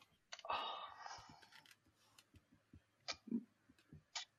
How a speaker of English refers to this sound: Listen to this keyboard. Oh, someone's showing off about his mechanical keyboard.